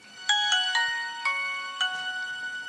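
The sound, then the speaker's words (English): A Nokia mobile phone ringtone plays its quick melody of bright, electronic notes, clear, with no talking over it. “Nokia.”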